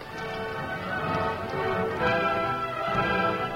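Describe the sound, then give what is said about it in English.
Horse hooves clip-clop in a steady, moderately loud rhythm over a continuous bed of music with no talking, as the Lone Ranger and Tonto take a wounded young man on horseback to their camp after the rain. “Let's get him on his horse, Tonto.”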